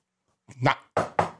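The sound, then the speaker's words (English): A brief vocal sound, then three sharp, loud knocks on a door in quick succession, each striking hard and fading quickly. “Knock at the door.”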